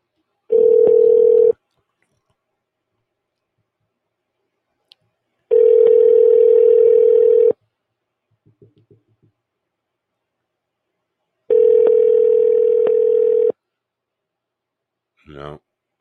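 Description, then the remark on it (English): A steady, low telephone tone sounds in three long bursts separated by silence while a call is placed to a place that may sell monkeys, with a few faint clicks of dialing in one gap and a brief voice at the end. “Let's see if I can get through it on a monkey.”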